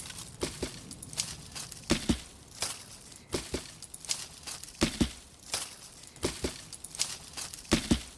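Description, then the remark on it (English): A big branch is hit against tree bark and leaves to create the rhythm for a musical experiment, in a steady, repeating rhythm: sharp, crisp thumps with crackling leafy rustle between them, moderately loud, with no voices. “And to create the rhythm, I used a big branch by hitting it against the cortex and leaves.”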